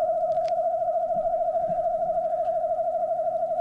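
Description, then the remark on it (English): A wood thrush song slowed down to one-tenth speed, from the bird's right voice box only: a single steady, hollow whistled tone holding nearly the same mid pitch with a faint quavering wobble, loud and continuous throughout, with no talking. “Here's another clip from a wood thrush, this time slowed down to 1/10 speed so that we can hear the contributions of the two separate voice boxes.”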